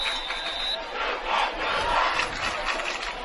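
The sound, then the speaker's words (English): A large Gallatin football crowd cheers and roars steadily, urging their team to a big defensive stop against Cookeville late in the second quarter, a dense wash of many voices that swells and dips in waves without a break, with no announcer speaking over it. “And the Gallatin crowd is getting fired up here, trying to cheer their team on to get a big stop.”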